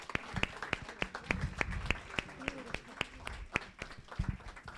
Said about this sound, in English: They have jobs, some are in plays, so this was something additional and extra to their lives, and please give them a round of applause of appreciation.